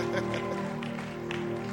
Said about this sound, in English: So this morning, with a clap, let's all welcome E.S. Joy to be a blessing to us.